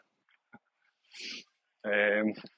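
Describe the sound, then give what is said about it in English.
A big boxer dog with a tail gives a breathy snort, then a loud, rough grunting vocalization, with a few faint clicks and sniffs before it, outdoors in glorious weather. “It was a bulldog. No, a boxer.”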